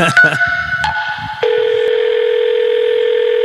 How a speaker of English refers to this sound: All right. Even the phone has reverb on it.